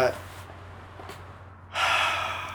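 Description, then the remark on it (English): A breathy yawn: a sharp intake of air, then a long, airy exhale that swells near the end. There is no talking over it. “It's back. Hashtag yawn.”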